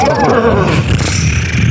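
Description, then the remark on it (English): A person imitates a horse's whinny as a vocal warm-up: a loud, quavering cry that slides downward in pitch for under a second, then trails off into a rough, breathy rasp. “Sounds a horse would make.”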